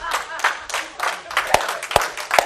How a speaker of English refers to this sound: And I see all you ladies clapping. Got some of you to do it too, so don't you be clapping.